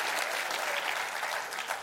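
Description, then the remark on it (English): An audience claps their hands in a steady, dense wash of applause that stays loud and even throughout, with no voices standing out above it. “Clap your hands and say, that's the peace I want.”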